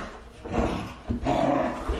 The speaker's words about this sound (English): Jesus fucking Christ! Shut that dog up! Close the door!